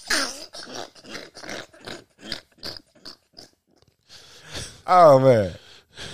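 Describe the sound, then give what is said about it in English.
Heavy, rhythmic breathing right up against a microphone, a quick series of loud huffs and gasps, ending in a loud voiced grunt that sounds almost like a snort. “You gotta be over here breathing in the microphone like I'm Jason stalking somebody.”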